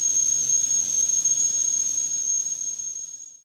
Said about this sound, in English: Just enjoy your tea. But take a sec. And enjoy the kettle as well.